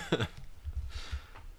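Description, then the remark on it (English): A single short cough bursts out at the start, followed by quiet low rumbling and faint shuffling noises. “Cough, cough.”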